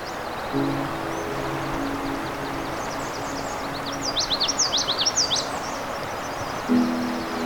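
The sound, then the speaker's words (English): Migrant warblers and other songbirds of Johnson Harbor, along Crane River, sing in a rapid, high chirping burst midway through, with fainter calls scattered around it over a steady outdoor hiss and a low droning hum. “In this final episode of the season, we'll continue to listen to the migrant warblers and other songbird species.”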